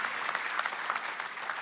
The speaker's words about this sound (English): Si le vamos a un aplauso, dárselo fuerte. If you give him an applause, give him a big one.